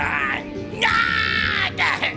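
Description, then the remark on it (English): The fiend Window Licker's anguished, drawn-out howl after being slashed across the inside of the wrist, rising into a strained, high-pitched cry that sustains and wavers before breaking off, followed by a shorter pained wail. “Bob slashed him across the inside of the wrist, and the fiend grabbed his arm, howling.”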